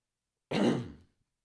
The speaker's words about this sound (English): Yeah. I'm sorry. I've been like coughing a lot today. Or like, yeah, turning away from the mic. I don't know. Something's in my throat or... See, something's in my throat, I think, but it's whatever.